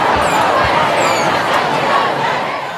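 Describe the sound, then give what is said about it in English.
A large crowd of climate protesters (youth, seniors, parents and babies) marches on Cambie Street in a day of action inspired by Fridays for Future. About 80,000 people roar as a dense, steady wall of overlapping voices and shouts, with a few brief whistles cutting through high above the loud, continuous din. “Youth, seniors, parents, babies, all marching together, asking for change.”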